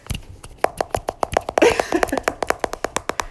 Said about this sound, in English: The next one was just ASMR, so we just started clapping.